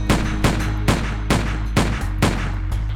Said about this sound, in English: Six blasts rang out, one after another.